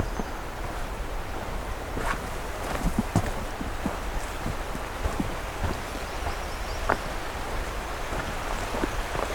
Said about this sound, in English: Got some nice rushing water sounds.